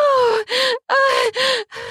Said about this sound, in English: Your breathing is heavy. I'm panting.